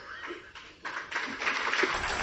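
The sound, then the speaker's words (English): Applause in the South Sudan parliament for the president, a dense crackle of many hands clapping that swells and grows louder partway through, then holds steady. No voices stand out. “And judging from the applause, it sounds like the president of South Sudan has support.”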